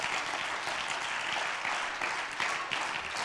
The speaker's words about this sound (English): Could you clap your hands unto the Lord one more time?